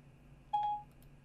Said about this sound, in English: And for some reason, Siri activated. I wasn't talking to the phone. I didn't even push the button, but I guess I am being spied on.